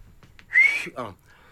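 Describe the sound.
A single loud, piercing fingers-in-mouth whistle that rises slightly in pitch and lasts under half a second, followed right after by a brief spoken exclamation.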